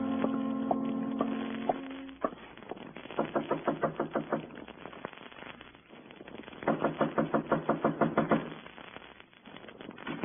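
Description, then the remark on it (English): Two bursts of rapid, steady knocking on a door in the morning, each a quick run of about eight or nine raps, separated by a short pause, clear with no one speaking. “Not even an early knocker on my door.”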